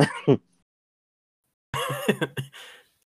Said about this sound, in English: Clear your throat real quick.